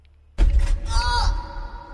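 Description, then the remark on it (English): A single heavy, dull thud sound effect from a soundboard hits suddenly, followed by a sustained low rumble with a faint wavering ring that lingers for over a second before cutting off. “What did you search for on the sound bar? Big dick or brick sound? I did thud. Oh, thud. Dull thud?”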